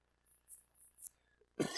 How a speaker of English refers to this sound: I'm sorry about the cough. It's just a little bit of a nagging kind of.